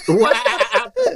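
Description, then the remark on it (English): A person mimics a goat's bleat: a loud, wavering, nasal cry lasting about a second, then a brief second bleat after a short pause. “And that's a goat.”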